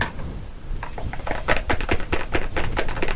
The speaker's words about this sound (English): I get to roll one dice.